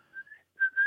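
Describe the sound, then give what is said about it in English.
Someone whistles a brief little tune in two short phrases separated by a pause, the second phrase louder and brighter than the first. No one speaks. “It's nice when someone walks past doing a little whistle.”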